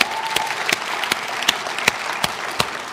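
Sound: audience applause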